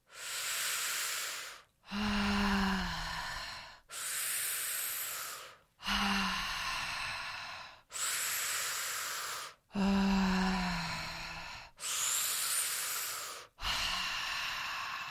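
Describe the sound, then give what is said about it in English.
Slow, deep belly breaths, breathing low with hands on the belly, sides and low back, alternating steady inhales and airy, breathy exhales in a regular rhythm of about eight breaths, with no talking. “Slide them around as we're doing the breath so you can practice breathing low.”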